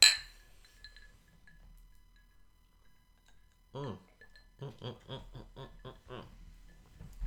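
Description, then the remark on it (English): A single bright clink of glasses touching in a toast, its ringing tone fading over a couple of seconds, followed by a pause and then voices murmuring and talking. “So my toast is to puppies and kitties and rainbows and friends and chocolate and ice cream.”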